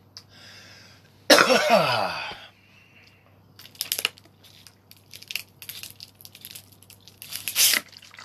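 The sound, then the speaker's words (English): Someone drinks water from a plastic bottle, downing about half of it: a loud crinkle of plastic, then a run of irregular gulps and swallows with softer crackles of the bottle squeezing between them. “Oh, that's half a bottle.”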